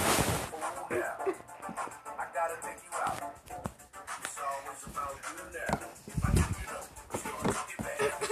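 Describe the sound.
A toy puppy doll lets out a string of short electronic yips and whimpers, steady, with a voice talking underneath and some shuffling handling noise.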